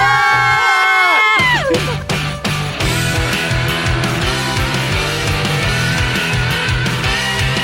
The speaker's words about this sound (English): Okay, well, you guys scream as a distraction, and yeah.